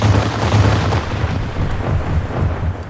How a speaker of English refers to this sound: Another barrage of cannon fire erupted from below, and another hulk was crippled and sank.